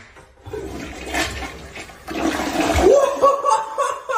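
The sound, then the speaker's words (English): A forceful toilet flush, set off by pushing the button all the way down, roars up loudly, with rushing, splashing water churning and swirling down over several seconds before the gurgle tails off. “we need one of those because our toilet gets clogged all the time”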